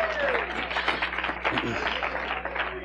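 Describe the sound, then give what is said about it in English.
An audience gives the Lord a hand clap of praise, a dense, steady patter of many hands lasting the whole stretch, with a few raised voices mingled in the crowd. “If you see it, give the Lord a hand clap of praise.”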